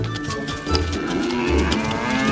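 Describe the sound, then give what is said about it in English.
Several cows, untied by Krishna and taken out to graze near the jungle, moo in overlapping, drawn-out low calls that fill the moment continuously, moderately loud, with no voices. “As per his father's instructions, Krishna untied the cows and took them out to graze near the jungle.”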